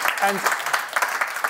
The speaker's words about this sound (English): Yeah, we can give the Lord a round of applause. He's done amazing.